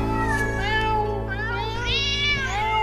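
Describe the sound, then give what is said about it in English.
A cat meows loudly, letting out two or three drawn-out, wavering cries in close succession, with a steady low hum running underneath. “"Don't let him in till it's all lapped up," and somebody shouted, "Meow."”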